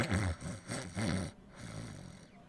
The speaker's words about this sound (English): As you enter, you hear very soft snores from the bed.